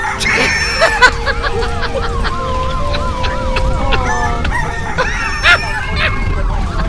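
Roosters crow repeatedly over a busy outdoor neighborhood backdrop, with chickens clucking, a dog-like bark or two, and a wavering siren-like tone running underneath; the chickens and roosters run loose in the street.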